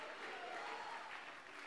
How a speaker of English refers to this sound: Can you clap your hands and can somebody shout hallelujah?